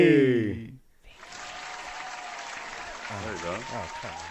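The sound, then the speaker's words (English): A short burst of voice gives way to a small crowd clapping steadily for a few seconds, a dense, even patter, with someone starting to talk over the applause near the end. “We got a nice little crowd.”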